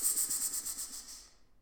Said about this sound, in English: Time to reveal the answer. That was a snake hissing, right? Yeah. Oh boy, that was a good one.